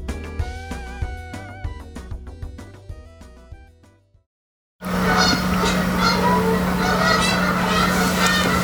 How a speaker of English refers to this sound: There are more geese out there every single day.